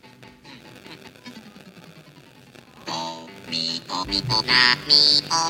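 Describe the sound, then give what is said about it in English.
Background music from the video game Animal Crossing, made in the game by the dog character K.K. Slider, plays alone. It starts as a soft, gentle melodic passage before swelling into a louder, brighter section with ringing high tones and a bouncy rhythm. “It is a dog named KK Slider that makes all the music in the entire game.”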